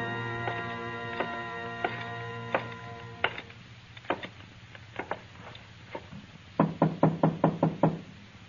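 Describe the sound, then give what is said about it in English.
Someone knocks on a door, first in slow, spaced raps over a fading sustained tone, then a quick, louder burst of about five firm knocks near the end. “Open the door, Carter. I want to talk to the girl.”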